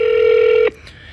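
A steady electronic ringback tone from a phone call to someone's dad late at night buzzes loudly and evenly for well over half a second, then cuts off abruptly, leaving only faint background hiss. No one speaks.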